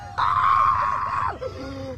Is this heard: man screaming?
yes